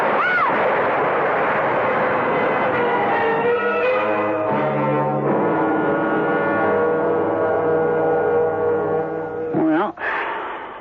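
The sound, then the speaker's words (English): A tree crashing down in a heavy, sustained roar of rumbling noise with droning tones layered through it, ending in a sharp whooshing sweep and a sudden cut. “Rick, that tree's falling. Rick, the tree. The tree.”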